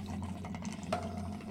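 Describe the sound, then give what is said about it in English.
Steady, low-pitched bubbling of bong water runs throughout, a continuous gurgling churn at even loudness with a brief brighter tone partway through. No one speaks. “I got to hit this bonged in D20, guys.”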